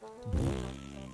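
A single drawn-out fart sound effect, a low buzzy, rippling blast lasting about a second, loud with no talking around it.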